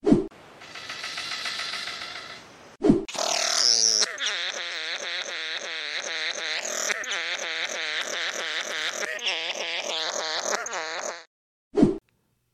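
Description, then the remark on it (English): Two strange bird calls in a row: first a raspy, buzzing drone lasting a few seconds, then a longer run of rapid, rhythmic, nasal pulses, loud and unbroken, with no talking. “I'll play two clips right now, two very short clips of a couple of these calls, and you'll see what I mean.”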